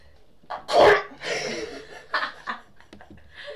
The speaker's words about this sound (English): Gonna sneeze.